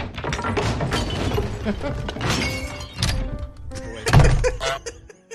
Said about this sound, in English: That was the wrong sound. That was the goose. The one time the goose goes into a house. The goose breaking a chair on a podcast. It was like so expected. I was like, yeah, that sounds right.